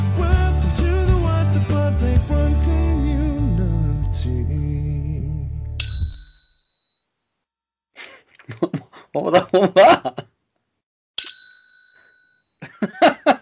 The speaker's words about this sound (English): What was that? What are you doing? It's me bell. What you got a bell for? Well, I found it in kids' room and I thought it'd make a really good prop for the show.